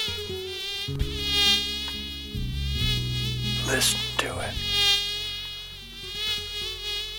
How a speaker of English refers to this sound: Listen to the mosquito. Listen to the mosquito.